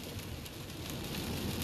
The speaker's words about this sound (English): Well, North Carolina, you know how the half and half is. Half and half? What are you talking about half and half rain? You know. You know, it's whenever it's raining on one side of the road and not raining on the other.